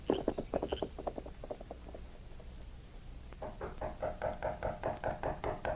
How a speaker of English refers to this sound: The knocking on the door finally wakened Jim.